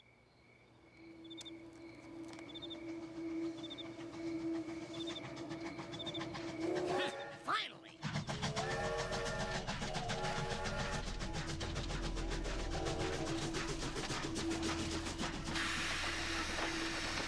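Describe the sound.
A train rumbles past on an active railroad, starting with a rising hum and birds chirping, then a sudden loud, steady roar of rattling wheels and cars on the tracks. A voice briefly speaks.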